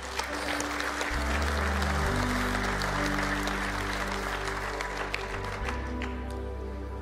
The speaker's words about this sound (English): If one person claps, we all should. Come on, it's just polite.